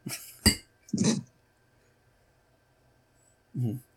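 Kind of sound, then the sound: household object, glasses clinking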